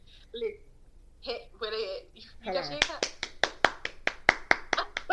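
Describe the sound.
Brief speech gives way to a burst of quick, sharp hand claps, around a dozen in an uneven rapid rhythm, fairly loud, with a bit of voice mixed in at the start.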